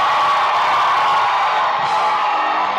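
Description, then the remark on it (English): An audience shouts loudly all together to give the Lord a shout, a dense, sustained roar of many voices with whoops and cheers blending into one continuous wall of sound that barely wavers. “Give the Lord a shout.”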